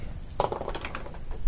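Dice rattle and clatter across a hard surface in a quick burst of small clicks that gradually settle, moderately loud, with no talking.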